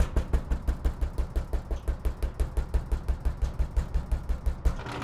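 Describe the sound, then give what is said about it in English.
Rapid, steady knocking on a door, a long unbroken run of dull, heavy thuds at about five or six per second, with no voices. “No one's around, so I think we're good to knock.”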